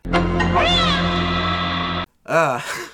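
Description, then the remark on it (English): A person's voice imitates a scrawny kitten's scream: a loud, strained, wavering wail held for about two seconds, then a brief pause and a shorter rising-and-falling yowl, unaccompanied. “And when he does, he screams like a malnourished kitten.”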